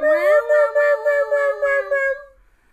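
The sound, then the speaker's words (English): A person's voice imitates a cat, holding one long, strained, wavering meow for about two seconds, pulsing in short beats before trailing off. It's fairly loud, with no other sounds. “Just me pretending to be a cat.”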